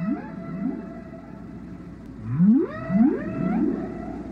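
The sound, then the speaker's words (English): Whale song with long rising, sweeping moans and harmonic upsweeps, several calls overlapping in a low rumbling underwater wash, moderately loud and heard on its own with no voices. “these whales are actually copying changes that they hear around them”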